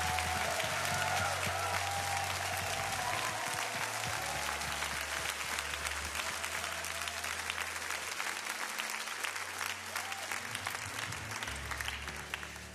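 A large audience claps steadily and warmly for several seconds, a dense, sustained wash of applause that fills the room before gradually thinning toward the end.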